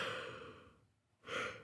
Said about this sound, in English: yawning, and then... we're going to have an anxiety attack, and then we're going to yawn for a little bit.